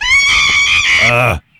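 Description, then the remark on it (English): An upset royal messenger monkey screeches loudly, one sustained, shrill, harsh cry lasting over a second, wavering slightly in pitch before cutting off abruptly into silence. “The royal messenger monkeys are here, and they sound a little upset.”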